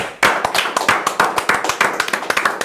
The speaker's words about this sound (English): Let's clap. Let's give it up for pussy.